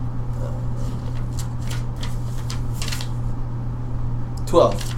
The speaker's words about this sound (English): So roll me a d10 with double intelligence.